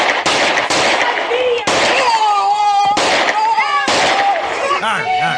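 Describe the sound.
Five or so sharp, loud gunshots ring out at uneven intervals as a man fires a gun at people, each a sudden cracking burst, while agitated voices shout and cry out between and over them.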